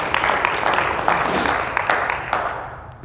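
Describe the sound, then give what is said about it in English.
An audience clapping their hands together in praise of God, a dense, steady patter of many claps with a few sharper ones standing out, thinning and softening over the last half second. “Just clap your hands. Come on, you can clap your hands.”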